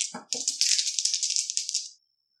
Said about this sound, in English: I rolled 7 dice, I got 1 success. I got 6 successes. I also got 6 successes.